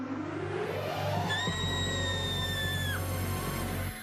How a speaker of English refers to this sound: However, our two young protagonists both scream, and we get a big fat scream take. Yep.